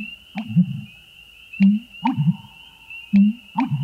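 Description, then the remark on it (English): A shy heron-family bird in a marsh with cattails gives deep, hollow booming calls, repeated in a rhythmic gulping cadence of low resonant pulses. A thin, steady high whine runs faintly underneath. “One fine spring morning, as you walk near a marsh, you are stopped in your tracks by a loud, reverberating call with a cadence that seems lifted from an old cartoon soundtrack.”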